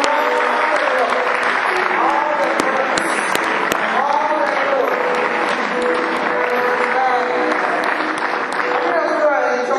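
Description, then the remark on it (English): An audience at a Christian worship service claps their hands loudly and steadily for the whole stretch, a dense patter of many hands, with voices calling out and singing over the clapping. “Clap your hands.”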